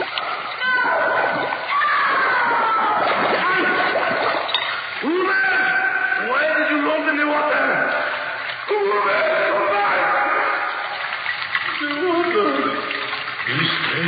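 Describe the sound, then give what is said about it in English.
Heavy, continuous splashing and churning water with frantic thrashing bursts throughout as a man is held under the water by his head and hair, while voices shout and cry out over the commotion. “Hold his head on the water. Eh? Hold it under.”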